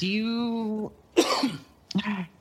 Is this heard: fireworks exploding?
no